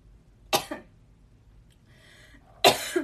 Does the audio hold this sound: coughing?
yes